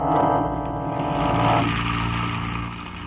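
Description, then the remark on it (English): A car engine hums steadily as the vehicle drives along, a continuous low rumble that eases slightly toward the end, with no voices. “He wheeled the car down Clay Street and we followed.”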